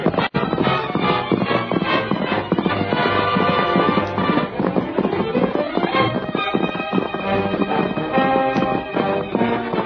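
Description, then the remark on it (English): Two horses ridden at their greatest speed gallop, hooves pounding in a fast, steady rhythm, loud, over a dense, continuous wash of sound lasting the whole stretch, with no one talking. “The masked man and his faithful Indian companion urged their horses to their greatest speed.”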